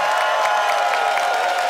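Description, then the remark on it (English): A crowd in Calgary applauds loudly and steadily, voting by applause for Erica Sigurdson as the winner, a dense wash of clapping with scattered cheers and whoops rising through it, sustained at an even level without pause. “The audience has heard both sides, and it is up to you, audience, to pick a winner by applause.”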